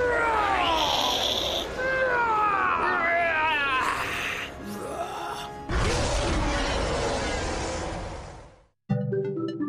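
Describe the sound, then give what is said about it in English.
A person imitates a dinosaur with loud, screechy howls that swoop up and down in pitch, followed by a long, harsh crashing noise that cuts off abruptly. “You know, even if dinosaurs didn't roar, I still like making dinosaur sounds.”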